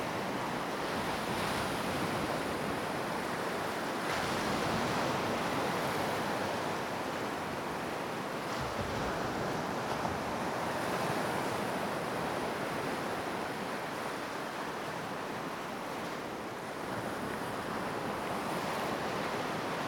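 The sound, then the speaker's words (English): Steady, roaring surf with ocean waves and rushing water filling the whole stretch, broad and continuous with gentle swells in intensity and a touch of wind, no voices present. “and the sound isn't—it's just going to be water.”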